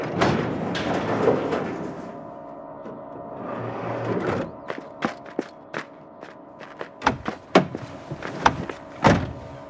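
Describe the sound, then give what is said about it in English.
A door is worked open and shut: a rushing, scraping stretch gives way to a run of sharp clicks and thumps, loudest near the end, with no one speaking. “I'll get the door open.”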